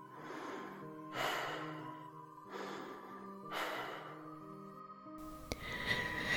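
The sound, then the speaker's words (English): Slow, heavy breathing, with three long airy breaths in a steady rhythm over a low hum, then a sharper noisy burst at the end. No one speaks. “Someone breathing on me. Hot, damp air grazing the nape of my neck.”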